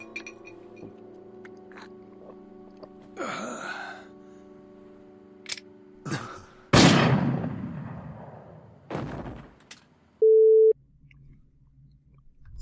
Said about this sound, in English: At the end, there's gotta be lots of fireworks to go out in style.